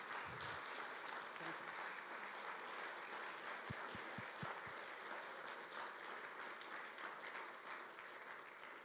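An audience applauds with dense, steady clapping that stays loud for about nine seconds, broken only by a short run of dull low thumps partway through.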